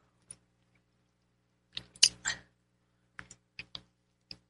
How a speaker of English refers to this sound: And I'm going to take a sip of my tea here.